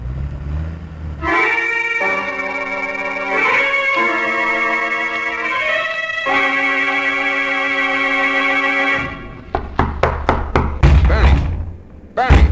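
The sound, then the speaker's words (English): A long, sustained horn-like tone holds for several seconds, then cuts off into a quick series of about seven loud, sharp knocks on a door. “you better open this door if you value your casino.”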